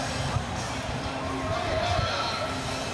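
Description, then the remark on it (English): A steady murmur of a large outdoor crowd gathered at the Reflection Pond at City Hall awaiting the players, some people climbing trees, many overlapping voices blending into an even, continuous hubbub with no single voice standing out, holding at a moderate level throughout. “I'm also looking forward to hearing this crowd behind me, and I know a lot more people are going to file in once the players arrive, too, to hear them speak.”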